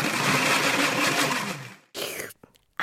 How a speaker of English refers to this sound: When it just won't blend, try adding half a glass of water to the top of the blender cup and whiz again.